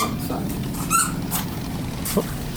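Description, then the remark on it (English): A squeaky toy gives a short, wavering squeak, followed later by a quick, lower squeak, both fairly faint against a steady murmur of background noise. “Lots of squeaky toys in Sturgis.”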